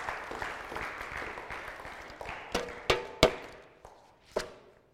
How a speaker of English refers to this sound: Now you clap.